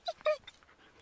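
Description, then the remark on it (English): A dog out on a hill gives two quick, high-pitched yelping barks, followed by a few softer whimpering whines that fade away within a second. “Get attacked by a dog.”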